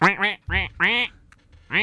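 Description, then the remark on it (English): A duckling quacks loud, letting out a quick run of five nasal quacks in uneven rhythm, with a short quiet gap before the last one. “Are you okay, duckling?”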